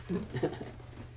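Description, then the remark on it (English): Quiet munching on potato chips, a few soft, irregular crunches and chewing sounds packed into about a second, with no one talking. “Let me munch on my chips real quick.”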